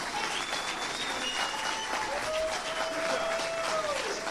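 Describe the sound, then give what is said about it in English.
A large crowd in Florida cheers and claps steadily in a standing ovation after DeSantis announces the suspension of State Attorney Andrew Warren, a dense wash of applause with scattered whoops and whistles rising above it, sustained and loud throughout. “Some cheers ensue.”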